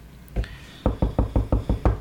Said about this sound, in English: Knock on the door.